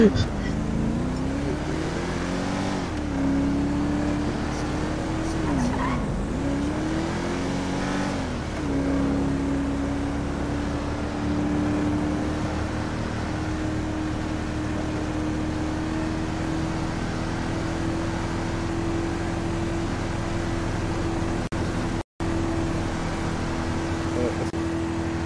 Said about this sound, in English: Do you guys like how the cars on this server go faster? And they're not going like super GTA slow?